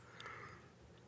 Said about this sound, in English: Start that yawning. What a day. That's what happens, man. Been a long day. Been a long day.